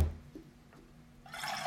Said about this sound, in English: I'm pouring myself some coffee.